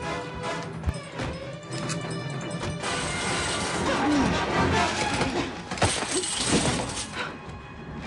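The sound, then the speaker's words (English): A violent car crash stunt in which a car hits Sawyer and Miles' car: a loud smash of crunching metal and shattering glass, followed by several seconds of clattering debris and grinding noise with a few sharp knocks. “It really is a heck of a car crash stunt.”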